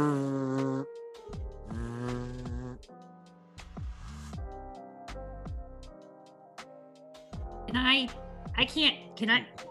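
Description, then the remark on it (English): A voice imitates a burner phone vibrating with an incoming text, making a series of buzzy, droning hums in short bursts that shift in pitch, with brief gaps between them and a sharper, brighter burst near the end. “No, you're just aware of a vibration.”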